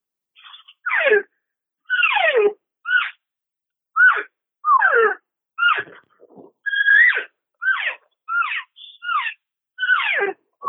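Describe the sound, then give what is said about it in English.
A rapid series of about a dozen cow calls blown on a new non-latex diaphragm call, each a short, raspy, high mew sliding downward in pitch, fairly loud with brief gaps and no talking. “And it makes some beautiful sound, especially cow calling. I'm going to do that real quick on it.”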